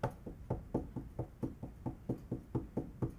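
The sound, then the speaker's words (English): A steady run of about fourteen firm knocks on a wooden door, evenly spaced and fairly quick, clear with no voices. “behold, I stand at the door and knock.”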